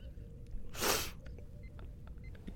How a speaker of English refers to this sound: Sometimes I sneeze and my bones hurt. Oh, my bones.